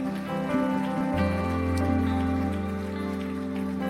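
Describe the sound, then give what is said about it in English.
A church audience claps for God together in a dense, steady patter that runs the whole time, with sustained musical chords humming underneath. No one speaks. “If you believe it, give him a hand clap for it.”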